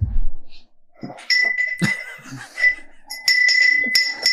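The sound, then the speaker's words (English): A small bell rings out in bright, high, sustained tones, struck repeatedly in two stretches with a short gap between, over faint background murmur and a low thump at the start. “He has rung that bell so little, he doesn't know how to ring the bell.”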